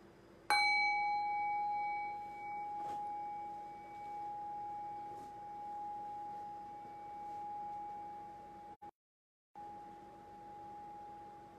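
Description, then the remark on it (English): A single meditation bell is struck once and rings on alone, its clear, layered tone slowly fading over several seconds with a steady, sustained hum. “Now ring the sound of the bell again. Rest your thinking mind on the decay of the bell.”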